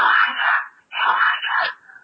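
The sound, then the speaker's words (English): A person imitates snoring with their voice: two raspy, breathy snore-like bursts in close succession, loud, with a short pause between them. “If she's snoring, she might not be snoring.”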